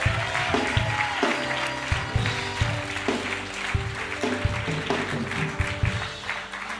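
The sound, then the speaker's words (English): A church audience claps their hands in praise to the Lord, sustained, dense applause, loud and steady throughout, with an organ or keyboard playing held chords underneath and a few cheers mixed in. “Come on, give the Lord a hand clap of praise today.”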